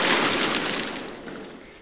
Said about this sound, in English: Splash, splash, splash.